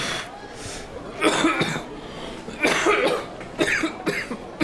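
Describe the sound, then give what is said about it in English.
Several harsh, hacking coughs come in bursts in a food court, a spaced-out fit of three or four rough coughs over a low background murmur. “No, they're looking at you because you're coughing.”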